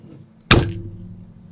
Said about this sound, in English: You got to shove that marble down, and then it opens it. But this marble also plays as a stopper.